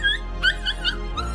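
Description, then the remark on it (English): A puppy whimpers and yips in about five short, high-pitched whines, fairly clear, over a low steady hum. “So neither prince nor princess noticed the sisters take the baby before they could see it and swap it for a puppy.”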